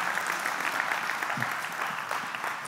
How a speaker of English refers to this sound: Come on, let's just give a hand clap of praise and we just declare we're going to receive something from the Lord.